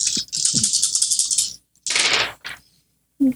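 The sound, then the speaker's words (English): Black dice clatter across a hard table in a rapid, rattling burst, then a second shorter tumble and a final single clack. Fairly loud, with no voices. “You guys are killing it with the black dice.”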